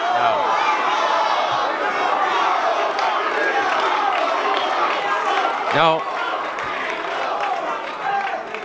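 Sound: crowd booing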